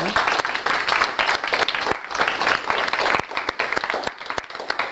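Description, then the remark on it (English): A group applauds steadily for several seconds, a dense wash of many hands clapping, fairly loud and sustained without any voices standing out, applauding their facilitator for their hard work. “So in conclusion, I would like all of you to thank your facilitator for their hard work and give them an applause.”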